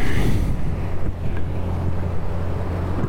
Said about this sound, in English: Got another boat coming up here. Looks like some more tourists are going to get off the boat.